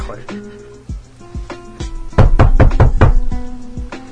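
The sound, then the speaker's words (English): Knocking on a door: a few scattered raps, then a quick, loud burst of about half a dozen knocks, over a faint steady background hum. “Let me just open this door here.”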